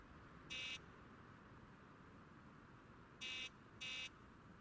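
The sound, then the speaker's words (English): A harsh electric apartment door buzzer sounds in three short bursts, one alone and then a quick pair a few seconds later, loud over a steady low background rumble. “As you go to the door, your apartment buzzer goes off.”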